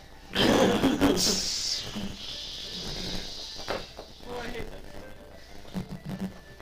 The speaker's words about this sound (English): Sound of steam goes off as the platform lowers down.